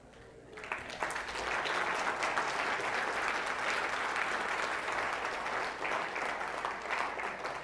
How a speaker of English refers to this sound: Oh yeah, now people start clapping, more people start standing. That's fantastic.